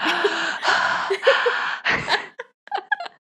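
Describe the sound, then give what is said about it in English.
A voice imitates heavy, panicked breathing: a run of loud, ragged, gasping breaths, trailing off into a few short, shaky gasps. “So her breathing is very heavy, which always reminds us of Gravity”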